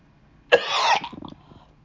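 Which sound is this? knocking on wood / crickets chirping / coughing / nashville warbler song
coughing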